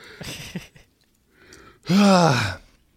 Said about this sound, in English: I was trying to trigger you to yawn while you were trying to say that sentence.